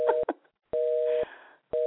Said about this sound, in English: Let me just try one more time. I think... Let me just see if he answers this. Oh, it's busy now.